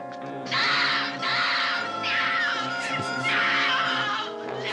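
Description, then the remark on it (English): A woman screams in terror: loud, harsh shrieks drawn out in several long bursts, broken only by brief gasps between them. “She was like, yeah, she is being murdered.”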